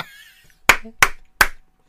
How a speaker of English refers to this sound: We lost your audio again. That's why he's clapping.